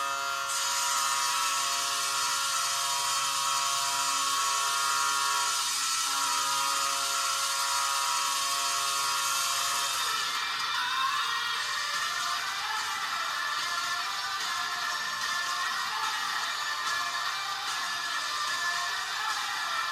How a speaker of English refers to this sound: I would say there's nothing offensive or great about this. The Foghorn is good, with a nice root fifth harmony that elevates it above Anaheim and Colorado's. I liked San Jose's Foghorn better, although this one has a little blast of electricity